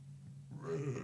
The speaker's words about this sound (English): Ah, what a nice burp. Oh, don't leave that in. Please. Leave that in. What a great burp.